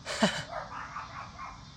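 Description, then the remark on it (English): A dog gives one sharp, strained bark, followed by raspy, wheezing breaths that continue steadily through the rest of the moment, with no talking. “This dog is tweaking out.”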